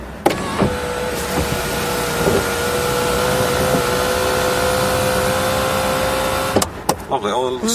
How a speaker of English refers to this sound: he just really appreciates the engineering in a sunroof, in an automatic sunroof. I have to turn the ignition on. What is that noise? Listen to the servos. Marvellous feat of engineering. It's almost like music itself. Listen.